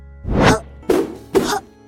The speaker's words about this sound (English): The bear throws a strong roundhouse kick at the pad, followed by two strong punches.